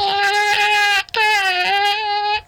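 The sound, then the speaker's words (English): A person imitates a cat in heat with two long, drawn-out yowling meows, loud and strongly tonal, each wavering slightly in pitch, separated by a brief pause. “Okay, and last but definitely not least, of course not, is our in heat meow, and we use this when we need a little bit more special kitten attention, oh.”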